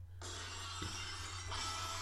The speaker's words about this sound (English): What kind of fucking version's that? It is glass shatter used from 2000 to 2001.